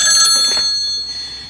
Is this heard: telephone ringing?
yes